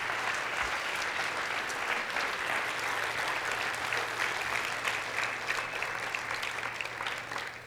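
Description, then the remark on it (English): An audience at The Springs Church applauds its graduating seniors steadily, a dense, even wash of many hands clapping that holds at a constant level throughout, with no voices rising above it and a slight fade near the end. “Let's give a big round of applause to our graduating seniors.”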